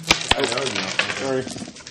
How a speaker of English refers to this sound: I was hoping throwing dice at the GM would change it.